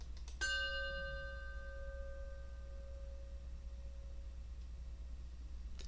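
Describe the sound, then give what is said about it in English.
A single chime is struck once, ringing out clearly with bright overtones, then its pure tone slowly fades over several seconds against a low, steady background hum. “As we listen to the chime, let us remember our connection to each other and the world around us.”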